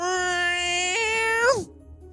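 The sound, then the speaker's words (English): A person imitates a cat in heat with one long, loud yowl held for over a second, stepping up in pitch before sliding down and cutting off abruptly. “Why are you grinding up against my casket like a cat in heat?”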